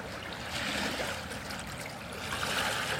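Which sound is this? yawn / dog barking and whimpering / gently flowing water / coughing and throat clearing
gently flowing water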